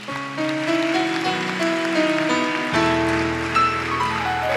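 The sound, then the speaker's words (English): An audience at a morning church worship service claps for the Lord in a dense, steady wash of applause, with sustained organ or keyboard chords ringing underneath and a low bass note entering partway through. No one speaks. “One more time, let's clap for the Lord.”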